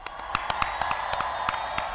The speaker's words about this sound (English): Hey, let's give Dr. Seuss's Cat in the Hat a round of applause. Come on.